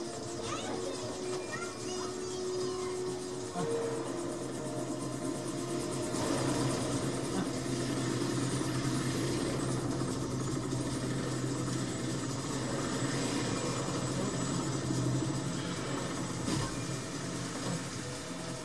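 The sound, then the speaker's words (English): A steady, continuous engine rumble with a low droning hum, like a car left idling, running evenly throughout without revving up or cutting out. “That's like, is that like leaving a taxi cab running, or is the car running?”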